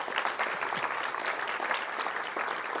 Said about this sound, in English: Just give a round of applause.